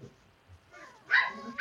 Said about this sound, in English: For those who are listening right now, I apologize yet again for the dogs, but this is our last show.